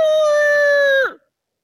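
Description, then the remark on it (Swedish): A man imitates a rooster crowing: one loud, strained high note held for about a second before its pitch drops away abruptly, with nothing else audible. “Härma en tupp.”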